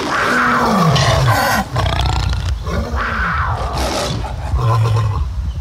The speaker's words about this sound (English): Sounds like lions. Not just lions, big cats and wild cats.